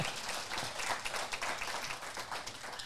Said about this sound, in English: yes, please, applause.